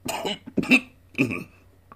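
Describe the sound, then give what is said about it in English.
Three rough, harsh coughs from one man, fairly loud, spaced unevenly across two seconds with short pauses between them, as he takes a sip and then a swallow of rough brandy straight from the bottle. “He took a sip. He coughed. He took a swallow. He coughed again.”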